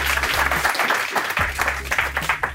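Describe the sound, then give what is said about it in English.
A crowd applauds steadily for a speaker introduced as a best-selling author, a dense wash of clapping that holds strong throughout, with a low rumbling hum underneath and no one speaking. “can I have a massive round of applause to Die Forster, everyone?”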